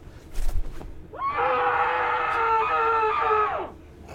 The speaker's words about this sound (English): I have to scream. I have to scream. I need a pillow.